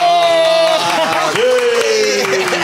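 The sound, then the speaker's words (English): An audience applauds with steady, dense clapping while voices cheer and whoop over it, a sustained pitched cheer sliding and holding throughout the short burst. “Round of applause.”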